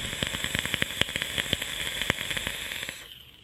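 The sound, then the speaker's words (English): A vape coil in an atomizer, loaded with e-liquid, crackles and hisses intensely, with a steady sizzling hiss punctuated by rapid, irregular sharp pops for about three seconds before fading out. No voices. “I have rarely ever had coils crackle that intensely on here, and it's great.”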